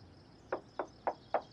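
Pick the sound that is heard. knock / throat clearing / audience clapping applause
knock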